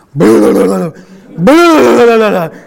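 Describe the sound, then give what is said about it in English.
A person imitates a garbled voice speaking through a diving regulator: two loud, muffled, wordless vocal bursts with wobbling pitch, separated by a short pause. “And the only thing that came out, what does the voice sound like in a regulator as you're breathing through it, the breathing apparatus?”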